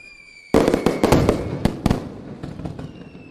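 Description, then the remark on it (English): A sudden barrage of fireworks erupts after a brief quiet moment, with loud overlapping cracks and bangs crackling rapidly, then thinning into scattered pops as the display tails off. “I'll tell you what, those fireworks are perfect for the news and notes this week”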